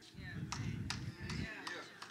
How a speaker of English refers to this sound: Why y'all clapping like that? Like I barely made some sense.